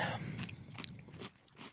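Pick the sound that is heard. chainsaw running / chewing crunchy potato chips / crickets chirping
chewing crunchy potato chips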